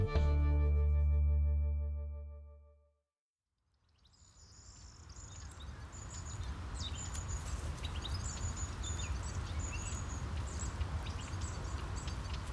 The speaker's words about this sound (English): This is some tape I got in a field in France this spring. You have to listen closely, but what you're hearing are things like the corn bunting, the European goldfinch, and the zitting cisticola.